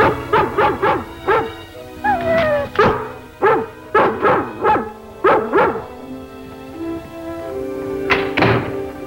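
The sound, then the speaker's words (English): A dog barks over and over in quick, steady bursts, fairly close, with a couple of dull thuds mixed in and a brief whine near the end. “Yeah, and John Shepherd comes home and he hears Lassie barking in the shed, and this is what happens.”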